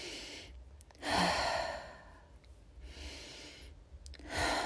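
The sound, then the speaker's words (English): Slow, deliberate deep breaths done as a conscious breathing exercise: a long airy inhale followed by a drawn-out exhale, repeated in a steady rhythm, fairly soft with no talking. “Take an inhale and an exhale.”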